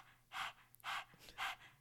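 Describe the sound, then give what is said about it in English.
A person imitates a dog's open-mouthed panting with tongue out, the first step of the breath of fire breathing technique, with three quick, rhythmic breathy huffs, evenly spaced and fairly soft, with no talking. “And the way I explain it to teach students is you start like you're panting like a dog. You stick your tongue out.”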